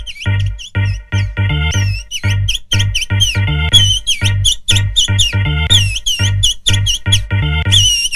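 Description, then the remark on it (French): Bright, high whistled notes slide and chirp in quick phrases over a pounding dance beat with a steady, thumping bass pulse, the whistling following the tune loudly throughout. “mais ce qui est important, ce n'est pas l'instru, c'est les sifflets.”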